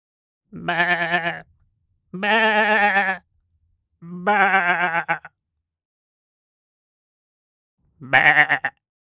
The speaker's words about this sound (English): Sheep.